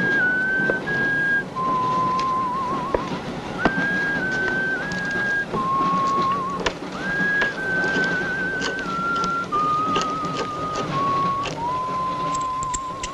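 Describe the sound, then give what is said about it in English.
A porter whistles a tune, clear pure notes stepping up and down between pitches in a steady melody, with a busy low background of clatter and noise underneath. “And at that point, that's when you get the porter come in, whistling a tune.”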